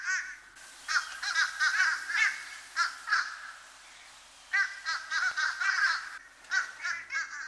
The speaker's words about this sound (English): Here's the fish crow.